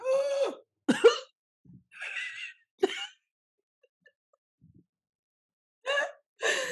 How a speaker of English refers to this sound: So sorry guys, I feel like all of a sudden I have to cough. She's a little verklempt.